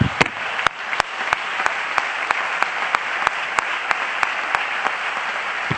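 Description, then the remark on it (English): An audience at a church service claps their hands unto the Lord in rejoicing, a dense, steady wash of applause with sharper claps landing on a quick, regular beat of about three per second throughout. “And when you get there, put your Bibles down and clap your hands unto the Lord with me, and we'll rejoice together.”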